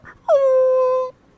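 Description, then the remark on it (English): A German shepherd whimpers once: a single drawn-out, high, nasal whine lasting under a second, fairly loud, with no talking around it. “y'all, when they showed it was two dogs, giant German shepherds.”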